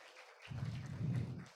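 An audience breaks into a short round of applause, a dense burst of many hands clapping that lasts about a second before cutting off, with no voices over it.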